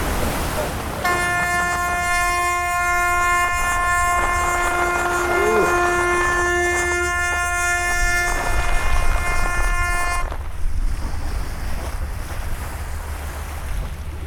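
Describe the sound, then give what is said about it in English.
A large ship passes close with its engines thrown into reverse: a deep, sustained horn blast lasts about nine seconds over loud engine rumble and churning water, then cuts off, leaving the heavy rumble and surf. No voices. “The Thunder is barreling down on the Bob Barker, so Peter throws the engines into reverse.”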